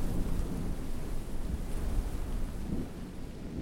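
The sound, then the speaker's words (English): A steady, low rumbling roar of wind, broad and blustery with gusty buffeting that eases slightly toward the end, heard on its own without any voices. “Wind.”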